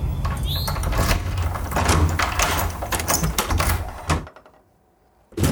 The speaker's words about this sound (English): Right, let's open up the door. Come on, let's have a look. Here we go.